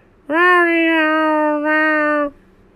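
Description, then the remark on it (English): A cat chewing Airheads candy gives a single long, drawn-out meow-like cry, holding a steady, nasal pitch for about two seconds, loud, with a brief dip near the end before it cuts off. “it sounds like you're saying meow. Seriously, this is the most you've ever sounded like a cat in the 2.5 years I've been talking to you.”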